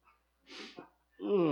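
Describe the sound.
A breathy 2:30 yawn: a long airy inhale, a small catch, then a voiced, sighing exhale that slides downward in pitch and trails off.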